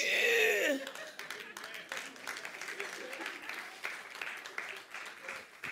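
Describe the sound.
An audience claps steadily in a dense, sustained burst of applause after a speaker declares that marriage is between one man and one woman, preceded by a brief loud swell of voices at the start, with the clapping continuing evenly to the end.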